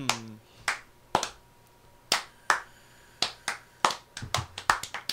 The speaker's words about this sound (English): And then everybody clapped.